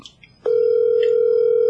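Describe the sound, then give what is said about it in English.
After a brief moment of faint background noise, a loud, steady telephone tone starts abruptly and holds at one pitch without a break as the phone call is forwarded to an automatic voice message. “Forwarded to an automatic voice message.”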